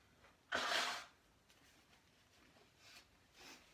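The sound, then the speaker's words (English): A loud, breathy honk of someone blowing their nose, lasting about half a second, followed by two softer snuffling blows a couple of seconds later. No one speaks. “Turn to Psalm 103 in your Bibles, verses 2 to 5, while I blow my nose.”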